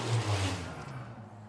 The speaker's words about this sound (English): And the car just went by.